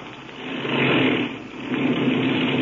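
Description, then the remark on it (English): A small airplane engine drones steadily as the plane taxis up under trees, a continuous buzzing hum that swells slightly in loudness and then holds, with no voices over it. “Then I'll cut the engine.”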